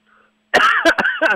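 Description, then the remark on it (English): A person coughs in a loud, harsh fit of three or four raspy bursts that run together after a brief quiet moment. “I got him mid cough for Scooter.”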